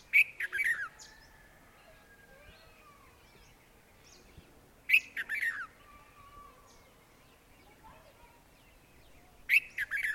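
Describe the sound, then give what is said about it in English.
A red-vented bulbul sings three short, bright, bubbling phrases spaced about five seconds apart, clear, with faint chirps from other birds filling the gaps. “What a sweet song. It is indeed the red-vented bulbul.”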